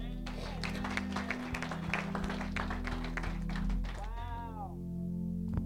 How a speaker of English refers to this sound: Clap for Jesus.